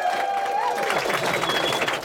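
An audience at a book event at Mysterious Galaxy applauds author Scott Sigler, a dense, steady wash of many hands clapping with some cheering mixed in. Loud and continuous for about two seconds, with a faint thin tone running through it.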